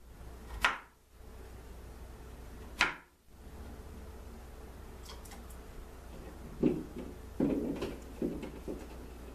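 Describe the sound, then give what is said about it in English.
Knife dicing cut-up potatoes for frying on a cutting board: two loud, sharp thunks spaced apart, a pause, then a quicker, irregular run of softer chopping knocks. No one speaks. “So now we got to dice them.”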